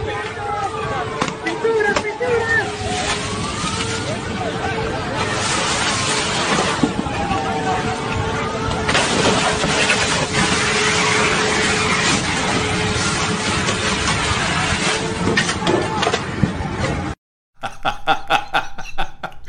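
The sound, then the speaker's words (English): A water cannon blasts a steady, loud rush of spray at protesters in a noisy crowd with scattered shouts and voices, then cuts out abruptly before a short burst of clattering noise. “Bring out the water cannons.”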